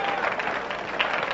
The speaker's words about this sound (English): Let's give the Lord a big hand clap. Would you do that?